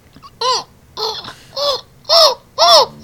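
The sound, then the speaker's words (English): A person imitates a seagull's call: five shrill, arching squawks that rise and fall in pitch, repeated in a steady rhythm and getting louder toward the end, with no speech. “Can you do your seagull noise?”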